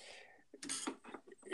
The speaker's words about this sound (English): Is someone cooking? Cooking right there? I heard a bell and shit. Oh, no, it's my typewriter. You're typing right now? No, I'm playing with, like, the slider of my typewriter.